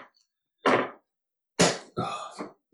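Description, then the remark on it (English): A beer bottle is pried open with a small axe-shaped Viking bottle opener: a few short, sharp clinks and knocks, then a bright pop of the cap with a brief hiss of escaping gas. “Your little Viking bottle opener.”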